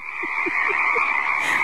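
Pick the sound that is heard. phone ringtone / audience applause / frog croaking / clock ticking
frog croaking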